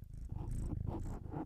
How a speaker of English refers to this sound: Also, can you hear this cat purring real quick? Let's see, ASMR.